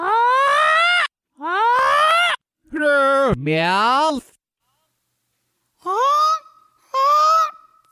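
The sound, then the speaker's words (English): A loud, strained bird squawking in a quick run of honking calls, each one cut off abruptly, then a brief silence before two more strangled squawks. “It sounded as if the bird was crying for help,”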